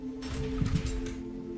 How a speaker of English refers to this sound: And the door unlocks.